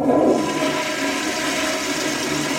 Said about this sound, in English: I've recorded the sound of a toilet flushing for a story about wastewater testing, chanting outside of protests, illegal logging in the Amazon rainforest.